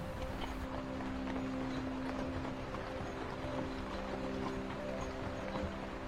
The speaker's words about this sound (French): Le son, si distinctif des chevaux, vous rappelle des souvenirs doux et chaleureux.